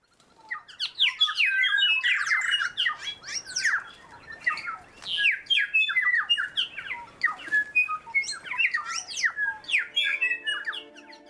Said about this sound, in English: Birdsong can be so beautiful, but what does it mean? Is this a melodic tune or an elaborate poem that's to enthrall and attract another bird? Or is it an angry shout, like a warning to stay out of my territory?